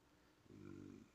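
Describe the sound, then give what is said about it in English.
A single low, rumbling growl made by a human voice imitating an animal, about half a second long, fairly loud after a quiet moment. “Did you hear the growl? It was a growl.”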